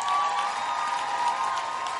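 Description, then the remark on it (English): An audience claps together in a steady, dense patter that holds evenly for about two seconds, with a faint crowd murmur beneath it, clapping after the speaker prompts the women in the audience to clap. “Women, I thought you would clap.”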